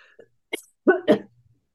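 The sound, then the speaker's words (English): A short fit of coughing: a small throaty catch, then two loud, rough coughs in quick succession, ending in a faint low rasp. “So we finally get this to work, and now I'm like coughing at you all.”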